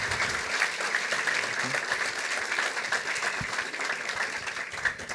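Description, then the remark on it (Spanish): Steady audience applause welcoming Rick Scarborough one morning, a dense wash of many hands clapping at an even loudness throughout, with no voices rising above it. “Así que recibamos con un aplauso a Rick Scarborough esta mañana.”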